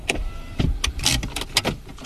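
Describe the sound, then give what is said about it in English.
A car drives past along a street, its engine noise broken by a series of short, rattling bursts over a low, steady rumble, with no voices. “The odd car drives by, but few people are out and about.”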